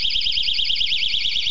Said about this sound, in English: It's a safety whistle.